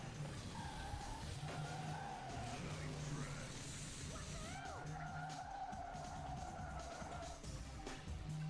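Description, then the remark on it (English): A video game race car hits a nitrous boost, its engine roaring loud and steady for several seconds while tires squeal in wavering, high-pitched streaks over the constant rumble. “Boom! Nitrous.”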